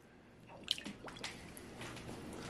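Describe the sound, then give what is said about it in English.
A small soft, squishy lamb toy plops into water with a soft splash, followed by gentle sloshing and dripping sounds, fairly quiet, with no one talking. “Let's put it in the water.”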